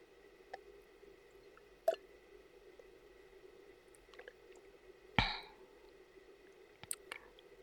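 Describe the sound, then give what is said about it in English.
A quiet stretch with a few soft wet mouth sounds and small clicks, then a brief slurping sip and faint lip smacks afterward; no one speaks. “Close your eyes and take a sip slowly. Try to feel it, to taste it.”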